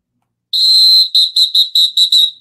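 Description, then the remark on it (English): A sharp, shrill whistle blast sounds loud: one long tone followed by six quick, evenly spaced short bursts, with silence before it and no voices. “I did a good job with the whistle today.”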